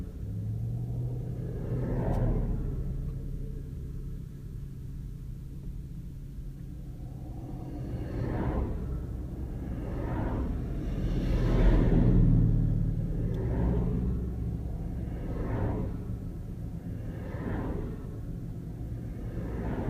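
road traffic passing by

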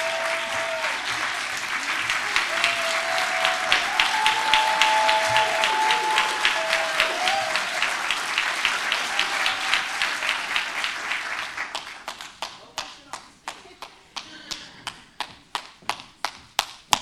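audience applause and clapping

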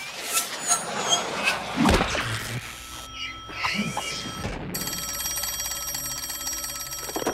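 telephone ringing

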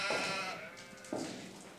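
sheep bleating

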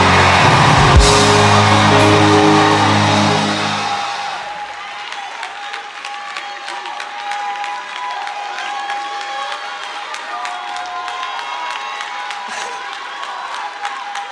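audience screaming and cheering

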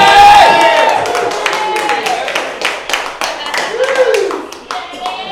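audience applause and cheering

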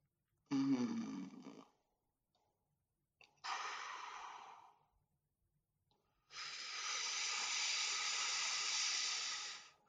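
deep breathing

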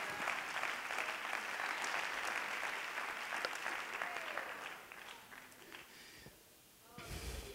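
audience clapping hands

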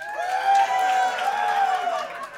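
audience cheering and clapping

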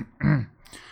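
small cough

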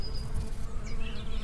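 bees buzzing

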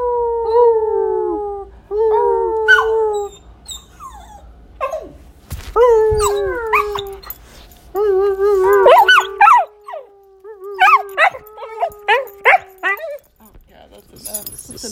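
dog howling

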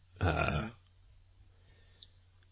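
burp

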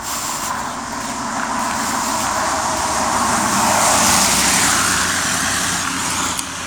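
car passing by

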